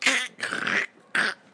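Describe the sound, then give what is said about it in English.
A voice mimics a cartoon tiger's snarling bite growl in three quick, raspy bursts, the middle one longest, loud with short pauses between. “I'm trying to remember that like cartoon sound of a tiger bite.”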